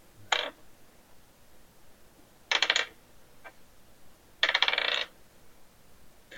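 Three bursts of sharp clattering as dice tumble and bounce onto a keyboard during a charisma saving roll, each lasting under a second, with quiet pauses between and no talking.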